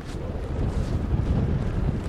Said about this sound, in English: The wind is faster than I expected, actually. They were saying a sea breeze would kick in, but I thought it would be later this afternoon. It's quite good. It's the perfect direction for long, fast reaches, and it's blowing probably about 10 to 15